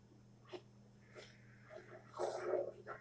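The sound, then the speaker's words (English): A dog barks a few times in short, scattered bursts in a movie scene, the loudest cluster near the end, sounding faint over a low steady hum. “Oh, a dog barked.”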